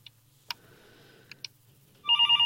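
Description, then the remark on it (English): A telephone starts ringing loudly at the very end, a bright warbling electronic trill. Before it, a few scattered clicks sound over a low steady hum, with no one talking. “get the girl to answer the phone.”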